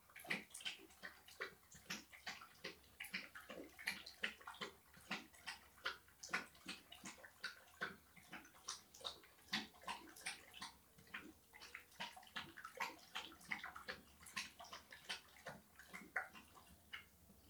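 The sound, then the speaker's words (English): A dog laps water steadily, producing quick, rhythmic wet slurps that repeat several times per second, fairly quiet, with no voices. “My dog's drinking water in the background.”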